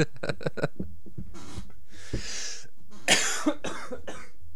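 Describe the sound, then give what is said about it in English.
A string of coughs and throat-clearing bursts, muffled, made off the microphone, coming in several clusters with brief pauses between them and no talking. “Oh, now I can cough off mic.”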